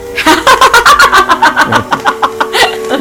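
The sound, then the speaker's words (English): A truck engine cranks in a fast, steady run of sputtering pulses, the starter grinding over and over for about three seconds without settling into an idle. “Oh, demon truck.”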